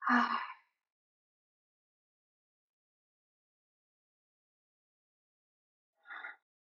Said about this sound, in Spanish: Empecemos tomando un par de respiraciones profundas, intencionales. Inhalando por la nariz. Llevando el aire hasta el estómago, llenando los pulmones. Y exhalando por la boca.